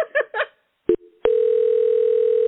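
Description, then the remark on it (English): A phone line ringing on an outgoing call from a radio show that goes unanswered: after a few brief sounds and a sharp click, a steady, clear electronic tone starts and holds unbroken to the end, fairly loud. “I'm sweating a little more from this conversation and the phone ringing than the actual weather itself.”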